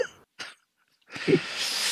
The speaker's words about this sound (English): So. Very loud cough, dude.